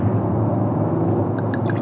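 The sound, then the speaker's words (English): White Bordeaux wine pours steadily into glasses at a tasting with a low, continuous gurgling rush, and a few bright, ringing glassy tones rise over it toward the end. “So as I pour these, I'm going to ask you,”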